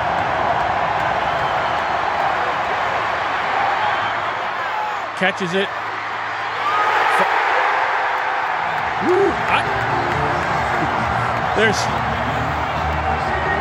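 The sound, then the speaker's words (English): A stadium crowd at a football game cheers in a dense, continuous roar as Dak Prescott throws on the last play; the roar swells midway and stays loud throughout, with a man's voice speaking briefly over the noise. “Listen to that crowd.”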